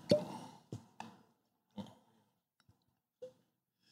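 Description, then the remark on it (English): A small sip of a drink: a few quiet, wet mouth and swallowing sounds spaced over a few seconds, with no talking. “I'll take a baby sip with you.”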